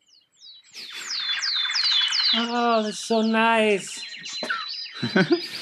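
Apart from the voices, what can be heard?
birds chirping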